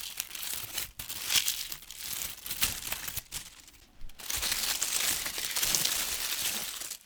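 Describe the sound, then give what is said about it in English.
Dry autumn leaves crunch and crackle underfoot in a steady, irregular series of bright crinkling bursts, like footsteps shuffling through a thick leaf pile, with brief pauses between clusters. “It's one of my favorite sounds in the fall, crunching leaves.”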